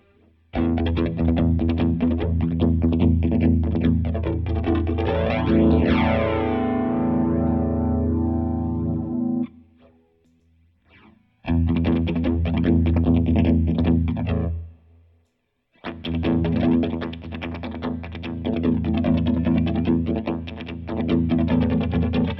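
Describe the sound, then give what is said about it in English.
Distorted electric guitar chords ring through a through-zero flanger effect whose speed is being changed, the tone whooshing in a sweeping jet-like sound through dramatic pitch swoops, played in three loud strummed sections separated by short pauses. “Now I'm going to change the speed of the zero through.”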